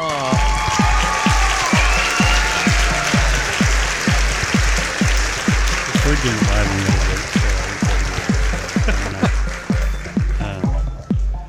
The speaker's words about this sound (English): the weird way I cut it so that there's like this uptick in the applause again